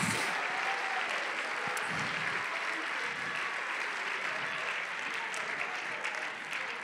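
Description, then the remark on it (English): An audience claps steadily, a dense, sustained wash of many hands with no pauses, holding an even loudness from start to finish. “Clap your hands, people.”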